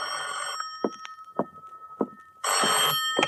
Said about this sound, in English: At 10:05, my phone rang.